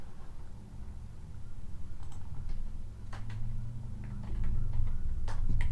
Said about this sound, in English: Hang on. I'm going to look up this guy's name because I think it's kind of funny. All right. Sorry, there's going to be some mouse clicking here.